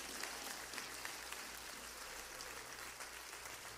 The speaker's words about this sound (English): One more time, somebody clap your hands and give God praise in this house.